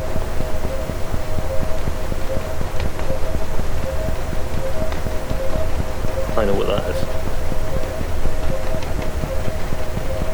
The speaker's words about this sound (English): Sounds like a train going past. It sounds like multiple trains. Mm-hmm. I think that's a vessel. I think I can hear the engine, but I can hear something else in there as well.